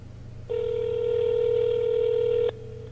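A single two-second ringback tone from an outgoing phone call placed to the dining room from the dining room, steady and clear, over a faint low hum. No one speaks.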